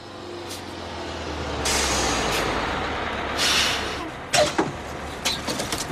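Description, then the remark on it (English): A bus engine idles low and steady while sharp hissing bursts of air brakes release several times, followed by a few clanking knocks near the end, with no one speaking. “The scene where he rents a bus and takes her to the bus station.”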